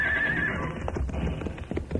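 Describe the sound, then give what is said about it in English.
Horses named Diablo and Lolo whinny loudly, a high wavering neigh, followed by rough snorting and the scuffle of hooves on the ground, as they are urged to jump over an arroyo to a ledge. “We cannot, but I think our horses can.”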